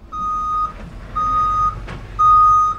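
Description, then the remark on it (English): A truck delivering fan palms to a stadium in California sounds its reversing alarm: three steady, evenly spaced beeps over a low engine rumble, fairly loud, with a brief clank between the second and third beep. “The fan palms look great as they come off the truck.”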